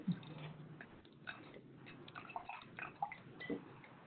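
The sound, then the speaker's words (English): Japanese whiskey pours into a glass, a steady splashing trickle with a few gurgles and small clinks over about four seconds, and no talking. “So let's pour it.”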